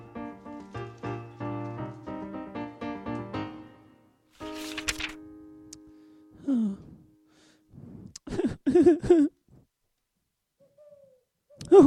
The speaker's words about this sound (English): Oh, ghastly. Ghastly noises. Don't look at me, owl. I shouldn't have wandered out into the wood.